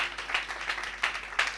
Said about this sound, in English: Will you clap for Jesus? Thank you, Lord.